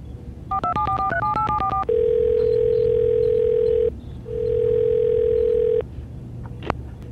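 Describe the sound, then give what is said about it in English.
A quick burst of touch-tone keypad beeps gives way to a loud, steady telephone tone that sounds twice in long stretches with a brief pause between, over a faint low hum, as a call is placed to a special effects department. “give me the SC department on the phone.”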